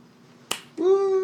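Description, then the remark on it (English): One sharp hand clap cracks out as a person applauds themself, then a voice lets out a sustained, rising whoop of cheering. “You're not supposed to applause for yourself, but yeah, just imagine that.”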